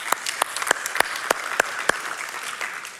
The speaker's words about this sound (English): Clap for that.